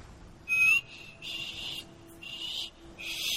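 A short, thin whistle note, followed by several breathy, airy blows that barely carry a tone, as a person repeatedly tries and fails to whistle clearly, with no talking.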